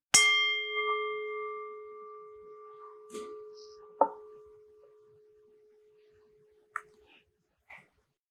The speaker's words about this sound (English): Please stay still until you can no longer hear the bell, at which time, if you'd like, you can offer yourself a bow or just gently stretch and open your eyes.